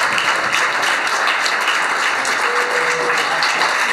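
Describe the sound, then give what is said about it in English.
A large audience applauds steadily after a speaker finishes a talk on stage, a dense wash of many hands clapping at once that stays loud and even throughout, with no voices over it. “I'm not actually leaving the stage, so, I mean, keep clapping.”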